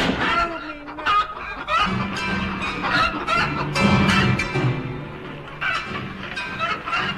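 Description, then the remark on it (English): Loud, busy chicken clucking fills the whole stretch, with overlapping clucks and squawks that never let up, with no talking over it. “In a trice, they harnessed my piano to a huge piebald chicken and drove it away.”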